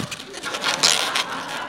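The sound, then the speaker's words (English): An old balloon being twisted by Ira Glass into a Snoopy balloon animal, forming the body and back legs: a steady run of squeaky rubbery squeals and creaks, with a sharper, louder squeak midway through the short stretch. “This is actually the part that sort of every animal you make out of balloons.”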